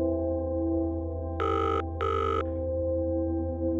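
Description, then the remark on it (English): A phone call's ringing tone sounds once as a quick double buzz, two short bursts back to back, clear and steady over a low constant hum, with no voices. “She tapped Dave's picture and pressed call. "Come on, come on, come on," she said as the ringing tone buzzed in her ear.”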